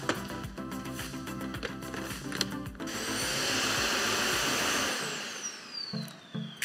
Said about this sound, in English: Some of you may have already used our automatic dust emptying system with patented air pulse technology, CleanStation. In the new Jet, we combined it with the charging dock. It's all in one, and it's just so easy.